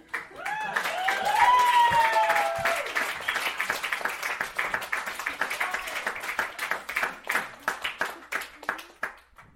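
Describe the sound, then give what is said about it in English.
An audience at a show applauds with dense, steady clapping, while a few voices whoop and cheer at the start. The applause thins toward the end into sparser, more distinct claps. “Well, I'm not going to ask you to keep clapping now.”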